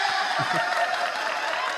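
Steady crowd applause with a dense wash of clapping and a few cheers or whoops rising briefly above it, sustained at an even level throughout.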